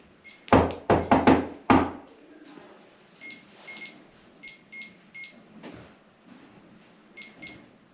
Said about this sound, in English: You want to play a game? Can you continue with this knock that I do?